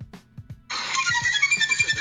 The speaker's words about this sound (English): Probably damn ringtone. fucking Tom and Jerry music. Hey. That's dead ass the music they play when they be beating the shit out of each other, too.